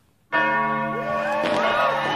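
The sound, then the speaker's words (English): Church bells ring out loud after a brief silence, ringing in the new year of 1968, a dense wash of overlapping peals with rich sustained harmonics and a fresh strike partway through. “So the bells ring in the new year of 1968.”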